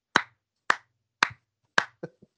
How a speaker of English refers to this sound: Clap her up, boys. Slow golf clap. There you go. Clap her up.